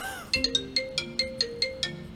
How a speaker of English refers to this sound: Oh my god, someone's calling my phone.